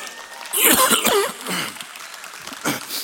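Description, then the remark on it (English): A couple of fairly loud coughs in quick succession from a preacher during a sermon, followed by softer throaty noises and breaths. “Lord, it sounds like a simple cough, but I know the devil doesn't want this message going out.”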